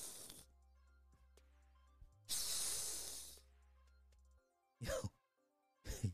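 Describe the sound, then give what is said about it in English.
A person makes a loud, sustained hiss like a snake, a breathy high-pitched rush lasting about a second, followed by a couple of shorter, sharper breathy bursts. “If I hiss at you, if you meet me in real life and I just hiss at you, you either wearing leopard print or I see a butterfly.”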